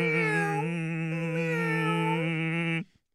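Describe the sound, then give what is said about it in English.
A person's voice mimics a cat with a single long, drawn-out meow, held steady and loud for nearly three seconds before cutting off abruptly. “You ain't no big cat, you little tiger. Little meow.”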